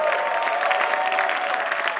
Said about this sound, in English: Give a mighty clap unto the Lord, somebody.